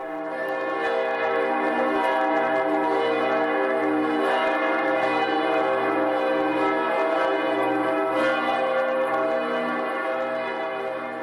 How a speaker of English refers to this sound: Here are the bells from Cologne, Germany.